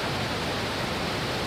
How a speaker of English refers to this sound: 5, 4, 3, 2, 1, 0, ignition, and liftoff for the Falcon 9, go Starlink.